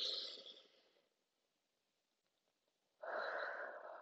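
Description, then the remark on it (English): Two deep, airy breaths during a deep breathing exercise, fairly loud: one long breath fading out, then a pause of near silence, then another strong breath starting abruptly, with no talking. “So let's all inhale.”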